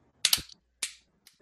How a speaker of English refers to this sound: We might as well do a double clap, and on the second clap, yes.